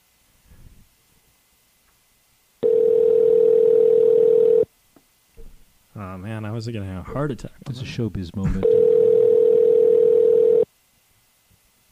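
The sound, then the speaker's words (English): A telephone ringback tone from a call placed on a cell phone sounds twice, each a loud, steady two-second buzz, with a few seconds of a man talking in the gap between the rings. “Oh, see, it's ringing.”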